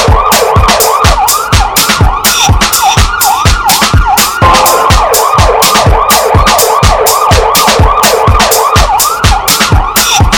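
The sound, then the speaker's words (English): A loud, fast-yelping emergency siren wails continuously, rising and falling rapidly, layered over a steady, pounding percussive beat with no one talking. “Siren side.”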